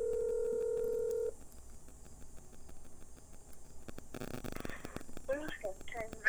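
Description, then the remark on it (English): A steady electronic telephone tone sounds for about a second as a phone call is placed, then cuts to quiet line hiss. A short crackling burst follows before a voice picks up and starts talking. “Calling.”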